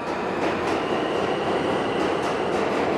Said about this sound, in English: So, what do I spy? The subway.